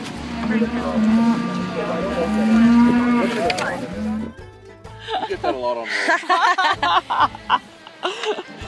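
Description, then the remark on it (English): A cow lets out one long, loud, drawn-out moo lasting several seconds, then voices take over, chatting with a bit of laughter. “There were more people there, but I think that's just because they were getting fresh hamburgers that were made from a cow out the back.”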